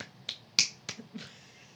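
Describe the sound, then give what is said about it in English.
Four or five sharp, crisp claps or snaps in a quick, slightly uneven rhythm, the UCLA eight-clap pattern being tried out, with no talking over it. “It's like the A-clap.”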